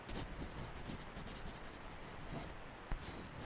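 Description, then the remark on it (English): A kid writes with a pen on paper from a car's glove box, a soft, steady, continuous scribbling with faint rubbing strokes and one small tap near the end, with no voices. “there's paper in the glove box. He can write it down.”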